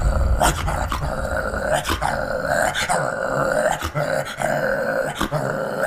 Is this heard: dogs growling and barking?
yes